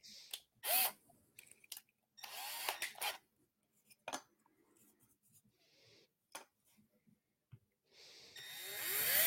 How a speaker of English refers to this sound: Of course, everybody's sitting here cringing, watching Chad drill into a silicone mat. No, I didn't go through.